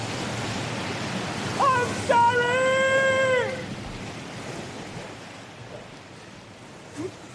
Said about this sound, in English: The end of the cave. We can't go any further. That's it, then. That's it. The sea's rising.